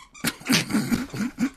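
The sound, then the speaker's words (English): A dog chews a squeaky little frog chew toy, producing a quick run of five or six wheezy, rubbery squeaks in an uneven rhythm, fairly loud, with no one talking. “Would someone mind taking the chew toy away from my dog?”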